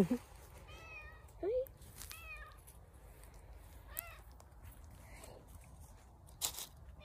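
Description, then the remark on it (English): A domestic cat meows several times, short rising cries spread across a few seconds, against a low background hum, with a couple of brief louder bumps. “getting a chance to pet the cat.”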